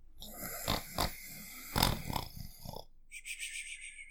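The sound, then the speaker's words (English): Rough, snorting snore bursts rise and fall over a couple of seconds, then give way to a thin, high whistling exhale, like a cartoonish snore-and-whistle pattern. “Yeah, that snoring pattern was totally Pegasus from Hercules.”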